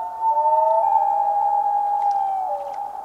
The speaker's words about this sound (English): Whether it's a yodel, wail, or tremolo, it's hard to forget the haunting voice of the common loon.